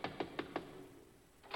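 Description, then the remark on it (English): Four quick, evenly spaced knocks on a door at the home of the secretary of the mayor's Christmas ball, fairly loud, followed by a short quiet pause and then the start of another knock. “Let's knock.”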